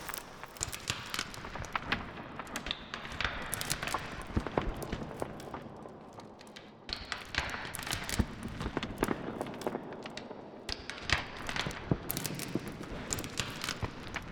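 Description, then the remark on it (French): Twigs and dry debris crackle and snap underfoot in a forest of tall red fir trees, a steady stream of sharp, irregular clicks, with footfalls pressing a loose rhythm and no voices. “Les brindilles craquent au sol, martèlent un rythme, pendant qu'un chant d'oiseau, un léger bruissement, nous rappelle la hauteur du décor.”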